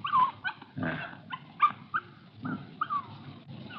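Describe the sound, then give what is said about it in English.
A young female puppy barks in a string of short, high-pitched yips, roughly six or seven in quick, uneven succession, with some whiny squeaks mixed in and no talking. “You want to see the puppy?”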